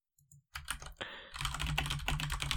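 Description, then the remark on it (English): Rapid clacking of a mechanical keyboard, fairly loud, starting with a few isolated taps and building into a dense, continuous burst of keystrokes with no voices. “This sounds like a perfect excuse for me to bring out my clacky keyboard.”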